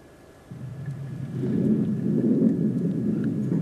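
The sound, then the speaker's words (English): A deep, rolling rumble of thunder snow at a home in Ogden, Utah, around 2 a.m. during overnight snow squalls, swells after a faint start and builds into a loud, sustained low roar, with a steady hiss underneath and no voices. “That sound of thunder snow from the home of KSL viewer listener Christine Martinez in Ogden around 2 o'clock this morning.”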